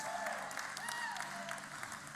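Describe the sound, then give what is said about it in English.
An audience claps together, a dense, steady wash of many hands with no clear beat, fairly soft and even throughout, with faint voices mixed underneath. “Oh, we better clap for Jesus louder than that in a minute, so get ready.”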